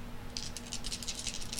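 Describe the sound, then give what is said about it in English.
Dice tumble and clatter in a quick, irregular run of small hard clicks, fairly faint over a low steady hum, with no one speaking. “Did you weight these dice?”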